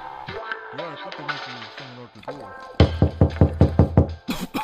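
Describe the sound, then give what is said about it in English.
A rapid series of about eight loud knocks on a door lands after a few seconds of voice-like sound, followed by a couple of sharper raps at the end. “All right, so I think I hear somebody at the door.”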